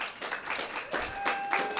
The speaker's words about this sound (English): So I want to give Benji Weatherly a nice round of applause.